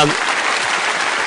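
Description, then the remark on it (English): A short burst of audience applause congratulating a 2018 United States Crystal Growing Champion, a dense, steady wash of many hands clapping at once, loud and even throughout with no voices on top. “You get applause for that.”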